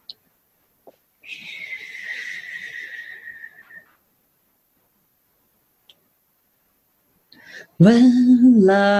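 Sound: donkey braying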